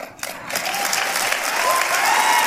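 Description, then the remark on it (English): A crowd claps steadily, the dense applause swelling slightly after a brief dip at the start and holding at a fairly loud, even level throughout. “And the mindless seals clapping along.”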